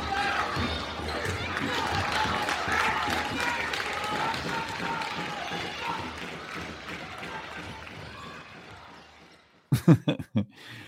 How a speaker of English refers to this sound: This week is our 3-year anniversary of this podcast. Praise God. Round of applause.